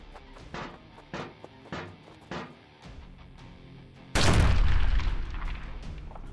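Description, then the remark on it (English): Several sharp shots from a Cognis las cannon fire down a trench in a steady rhythm, followed by a sudden, loud explosion as it is blown apart by a plasma pistol, roaring and then trailing off into a heavy, lingering rumble. “I look back as the rubble of the las cannon bounces up out of the trench, blown apart by a plasma pistol.”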